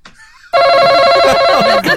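A game show buzzer blares once as a contestant buzzes in during round three to answer a question, a loud, steady, harsh tone lasting over a second, while voices talk underneath it.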